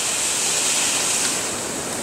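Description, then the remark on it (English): Heavy rain pours down outside in a steady, dense hiss, bright and loud, holding an even roar for the whole stretch with no voices or breaks. “Boy, the rain is coming in.”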